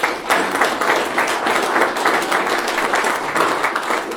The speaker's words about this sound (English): Very nice. So, first of all, give him a round of applause.